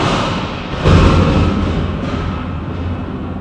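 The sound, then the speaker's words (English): A thunder sound effect: a deep, continuous rumble that swells into a louder roll about a second in, then slowly fades while still grumbling. No voices are heard. “The way you set that up, the sound effect shouldn't be thunder, but rather just like a little trickle of rain.”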